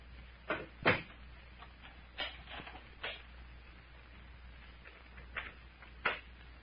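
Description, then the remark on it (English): Two doors thud shut and locks click, a series of sharp wooden clunks and latch sounds spread unevenly over several seconds, with no talking. “Did you lock both doors, Captain?”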